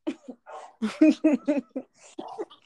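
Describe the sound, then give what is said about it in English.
A dog barks repeatedly in a quick, uneven series of short yips and woofs, moderately loud, with brief gaps between bursts and no talking. “And now we pause for a bark break.”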